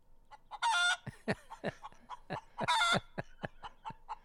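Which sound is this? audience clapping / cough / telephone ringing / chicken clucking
chicken clucking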